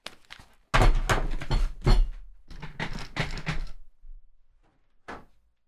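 A door is opened with a series of loud, close clunks and rattles, followed by a quiet pause and then a short, softer thud as it shuts.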